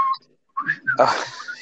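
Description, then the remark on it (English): A person whistles a short run of chirpy, bird-like notes, imitating birdsong as the bird noises in a film scene, ending in a breathy, hissing flourish. “The bird noises were all made by someone whistling.”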